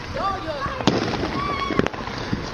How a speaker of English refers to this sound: They're about to set off some bootleg fireworks.